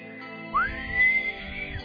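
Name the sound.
failed attempt at whistling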